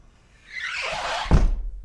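A front door opening: a rising whoosh of air builds for about a second, then ends in one solid thud, with no voices.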